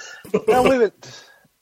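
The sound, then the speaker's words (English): A single sneeze: a sharp intake, then an explosive, voiced burst that rises and falls in pitch, followed by a short, fainter breathy tail. “Bless you.”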